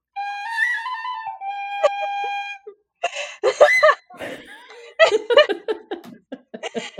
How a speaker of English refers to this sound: Do the whistle.